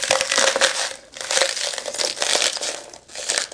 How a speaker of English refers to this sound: Look at all those little mini ice cubes pop out.